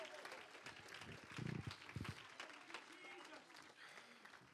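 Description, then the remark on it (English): An audience claps hands steadily in praise of the Lord during a sermon, a dense wash of many overlapping claps that lasts the whole moment, with voices calling out underneath, the whole scene sounding soft. “Oh, somebody give the Lord a hand clap of praise tonight.”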